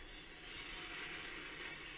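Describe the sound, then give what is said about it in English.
A steady, sustained roaring whoosh like a spaceship sound effect, dense and hissy with a thin high whine running through it, holding at an even level for two seconds with no voices. “That sounds like a spaceship.”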